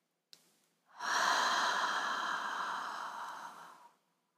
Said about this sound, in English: Draw in a few deep breaths, releasing out the mouth.